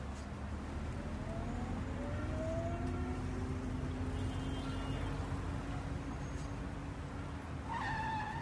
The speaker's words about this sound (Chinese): 哎。你怎么急刹车啊？ No, 那里有摄像头，超速会被拍下来的。